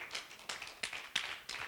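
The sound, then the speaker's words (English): An audience claps hands together in a steady, quick rhythm as hand-clap praise to God, the crisp claps landing about three per second and blending into a continuous patter, with no talking. “Come on, somebody, give God a hand clap praise for that.”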